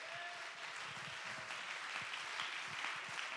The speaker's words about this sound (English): Somebody clap your hands and give God the praise right now.